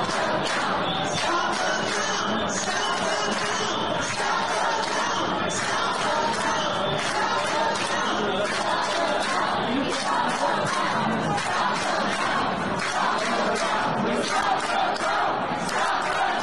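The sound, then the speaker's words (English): A large crowd of protesting Trump supporters at the TCF Center in Detroit shouts and screams continuously, yelling "stop the vote", a dense, loud roar of many overlapping voices with rising and falling yells and no pauses throughout. “And just like out in Arizona, people are protesting here at the TCF Center in Detroit, and they're all screaming, and they all know.”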